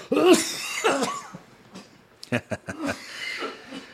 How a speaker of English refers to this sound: I got to cough for a second, man.